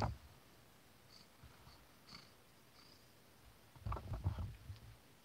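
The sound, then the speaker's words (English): A cat being hugged for Hug Your Cat Day purrs softly, a faint low rumble that rises into a few louder, rougher bursts near the end, with no talking. “She's purring. Can you hear this?”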